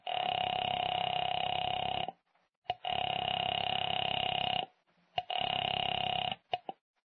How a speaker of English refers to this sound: And Mrs. Morris, knowing how foolish it was, knowing it, went to the phone and dialed.